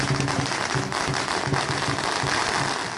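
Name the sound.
firecrackers going off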